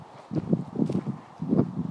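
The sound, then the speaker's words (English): A pony's hooves clip-clop along a grass path in a steady, muffled rhythm, several soft thuds passing, with faint outdoor rustle and no talking. “Now there's another pony coming. This looks more like a pony than a horse.”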